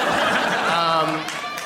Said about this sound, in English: Hear that clap? Yeah. That is passionate people.